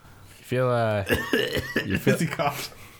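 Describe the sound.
A loud voice imitates a rough, old-man hacking cough: a strained vocal groan followed by a rapid series of harsh, throaty coughing bursts.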